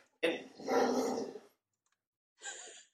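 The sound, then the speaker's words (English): A dog growls and barks: one drawn-out, rumbling burst, a short silence, then a second, briefer bark-like outburst near the end. “Your devil dog said hello.”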